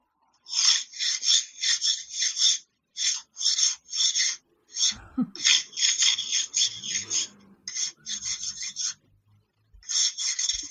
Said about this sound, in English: Here's a Canadian Dumpty Dum for you, all the way from Ottawa, Ontario. Ice being scraped off a windshield. Hopefully this works. Recording from phone onto computer.